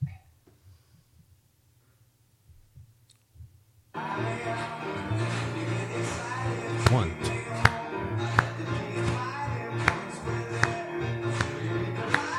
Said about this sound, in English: And he's singing at the piano, and you can see the audience clapping on 1 and 3. Now, if you kind of pay attention, about 40 seconds in, something happens. You can clap with the audience on 1 and 3.